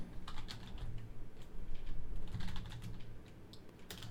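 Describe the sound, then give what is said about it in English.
Rapid, uneven clicking of keys on a computer keyboard as someone looks something up live, fairly soft, with bursts of quick taps over a low background hum and no talking. “Hold on, y'all. Corey's typing.”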